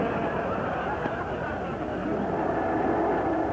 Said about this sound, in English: Oh, listen to that surf. Why, I think it's right under our window.